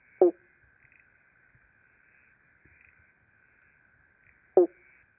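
Two loud, hollow 'bonk' calls of an eastern pobblebonk frog, spaced about four seconds apart, ring out over a faint, steady background chorus of high buzzing.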